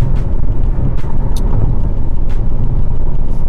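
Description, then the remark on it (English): A car drives along the road on the way to work, heard as a loud, steady low rumble of engine and tyre noise that continues unbroken throughout, with a few faint, brief hissy bursts and no talking. “Anywho, the only privacy I have is my car on my way to work and on my way back home.”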